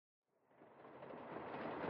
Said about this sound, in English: Attention passengers, do not be alarmed as this train is about to take to the sky, reach 88 miles per hour, and take us back to ancient Rome. Enjoy the ride.